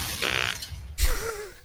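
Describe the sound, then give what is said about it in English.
A short fart, with a hissy burst of air first, then a louder low blat whose wavering pitch trails off. No one speaks. “I'm never ready for the farts.”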